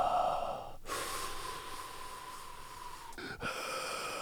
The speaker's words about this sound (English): Heavy breathing has subsided.